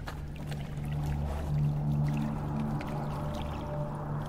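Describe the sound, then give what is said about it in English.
Flood water sloshes and churns steadily in a corridor, rising to shin height, a continuous wet rushing with a low droning hum running underneath, no voices. “The sloshing grew deafening as the flood water rose to their shins.”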